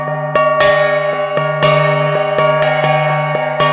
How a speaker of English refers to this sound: That's right, the gangsa. You apply a stick on the gong. Okay. And then, of course, and then there's the sound. Right. But the gong itself is the resonator.